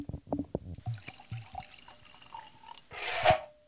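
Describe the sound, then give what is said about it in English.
Wine glugs and splashes into a glass, with a few clinks and drips before a brief louder gush of liquid near the end. “hold my mic while I pour.”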